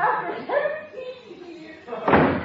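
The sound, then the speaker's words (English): Muffled voices murmur for a couple of seconds, then a door is opened to see who is calling, with a sudden, fairly loud thump and rattle. “I wonder who that can be. I'll open it.”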